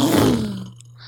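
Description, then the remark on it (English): A voice imitates a boat engine with one loud, gravelly growl that slides downward in pitch and fades out in under a second. “It was supposed to be a boat.”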